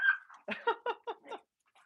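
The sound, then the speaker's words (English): A dog barks in a quick run of five or six sharp, yappy barks, moderately loud, with a brief whine before the barks and a faint yip trailing off at the end. “The dogs will probably follow you.”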